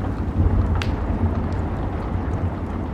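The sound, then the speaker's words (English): A steady, dense patter of rain drums on a roof over a deep, continuous low rumble of thunder, with a brief sharper tick near the start and no voices. “If you listen closely, you can hear the rain hitting the roof.”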